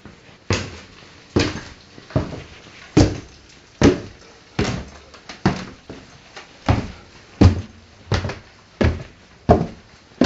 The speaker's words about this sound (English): Okay, this is a recording of me walking down the stairs in our family home, just so you can hear how loud they are.